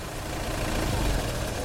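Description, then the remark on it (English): A tractor engine rumbles with a low, rough chug, swelling slightly midway and then sputtering on steadily as the tractor stalls, with no voices present. “That's when the tractor stalled.”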